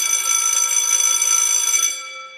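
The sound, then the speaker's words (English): A bright, shimmering bell, used to signal a sidebar segment, rings steadily for about two seconds with high metallic overtones, then its tones fade out into a lingering hum. No voices are heard. “The bell signals a sidebar.”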